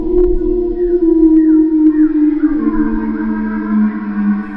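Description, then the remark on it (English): A loud, close, angry-sounding howl heard as weights are slammed down. It holds for several seconds, its pitch wavering and sliding lower toward the end, with a low rumble underneath and no one speaking. “When they slammed the weights down, that time the howling seemed to come from a whole lot closer.”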